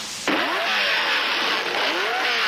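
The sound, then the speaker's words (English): A sand dune buggy on a Volkswagen chassis, with big wide tires, mag wheels and a Corvair engine of about 230 horsepower in the back, weighing about 1,000 pounds, roars to life and revs hard, its pitch sweeping up and down in repeated surges, loud with no voices. “What it is set on a Volkswagen chassis with great old wide weenies, big wide tires on it, mag wheels, Corvair engine stuffed in the back”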